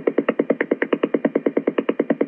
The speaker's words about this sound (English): Okay, so this is what Wi-Fi would sound like.